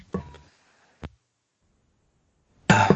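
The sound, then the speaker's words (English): A few harsh coughs: a quick double cough, a short single one, then silence before a louder, longer cough at the end. No one speaks. “Sorry, I was coughing.”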